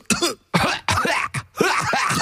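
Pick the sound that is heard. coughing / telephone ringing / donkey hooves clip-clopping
coughing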